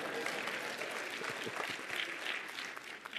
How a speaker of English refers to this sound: Now, go ahead and clap if you want to.